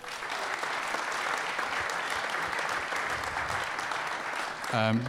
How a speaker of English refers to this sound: Just before we get into the questions, a big thanks to Temps for giving us the Carragher shirt. Big round of applause.